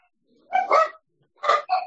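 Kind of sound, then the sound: animal, dog barking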